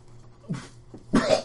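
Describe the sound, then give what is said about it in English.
A voice acts out a woman's wet, gurgling cough as she coughs up blood: a short hack followed by a louder, throaty burst with a raspy, phlegmy edge, fairly loud. “She coughs up a wad of blood.”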